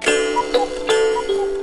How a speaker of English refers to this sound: there we were again at my aunt and uncle's house for Christmas Eve, sitting down to do our gift exchange ritual, as the Christmas-themed cuckoo clock that my grandmother had given my aunt years earlier rung out an unholy orchestra of Christmas bells.